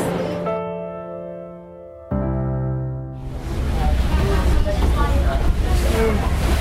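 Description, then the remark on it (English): A sustained harmonic drone plays for about three seconds, then gives way to a steady, loud rush of wind and churning water washing against the side of the Staten Island ferry in New York. “I don't know if you can hear the waves washing on the side of the ferry and the wind blowing, but that's it.”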